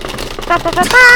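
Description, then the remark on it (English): A quick improvised drum roll tapped out on a keyboard tray before a giveaway winner is announced: a fast, even rattle of hard taps lasting about a second, ending in a brief higher tonal sound. “That's a keyboard tray.”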